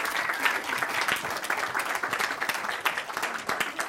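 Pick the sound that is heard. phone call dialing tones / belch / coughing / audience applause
audience applause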